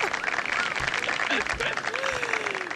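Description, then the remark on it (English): A canned burst of studio audience applause: steady, dense clapping with a few whoops and cheers mixed in, holding at an even loudness for a few seconds. “Word, live studio applause.”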